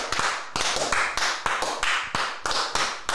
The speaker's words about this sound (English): Come on, welcome. A round of applause.